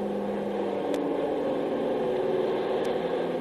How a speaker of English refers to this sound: That's the third Navy plane I've seen over the island in the last 24 hours. I wonder why they're hanging around so much.